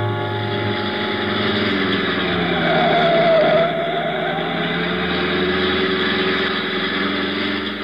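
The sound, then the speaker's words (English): A car engine roars steadily at high revs, loud, its droning pitch rising slightly mid-way as the car speeds along the road toward San Juan. No voices. “Out to the car, fast. We've got about one chance in ten of getting to San Juan before they catch us.”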